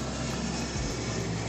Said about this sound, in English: So I heard, another plane, honey. JetBlue, going to Hawaii.